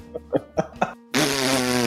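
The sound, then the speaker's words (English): A few short puffing pops, then a brief pause and a long, loud, buzzing raspberry, a fart sound blown with the lips, with no talking. “That's what I do when I see the people on Jeffrey Epstein's flight log, because they're big buttheads, and they're just farting.”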